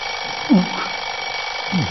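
An alarm clock rings steadily through the whole moment, a thin continuous jangle, with two brief low groaning vocal sounds rising over it.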